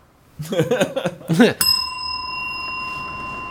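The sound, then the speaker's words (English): A person talks briefly, then a single bright bell strike rings out loudly and sustains, its clear tone lingering and slowly fading for about two seconds. “But the bell changes it, man.”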